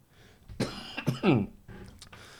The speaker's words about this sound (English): I'm just going to try and ease my cough here.